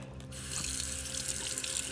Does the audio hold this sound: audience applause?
no